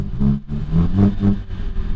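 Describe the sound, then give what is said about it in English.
A car engine, started while the shift paddle is held in, rumbles low, rising and dipping in a couple of short, subdued revs over two seconds with no voices, sounding muffled rather than loud. “So if you hold in the shift paddle while you're starting it, it starts like this.”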